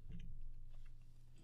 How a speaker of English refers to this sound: I'm gonna take a yummy sip of water now.